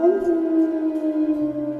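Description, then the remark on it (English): Wolves howl in one long, unbroken wail that holds a steady pitch for about two seconds, fairly loud, with no talking, during bitter winter sleet and snow. “He heard wolves howling, and soon he realized that he was lost.”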